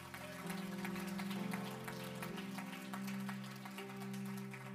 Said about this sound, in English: Anybody want to let Him change us? Come on, can you clap your hands?